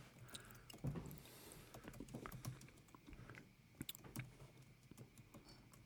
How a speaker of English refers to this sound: What are you typing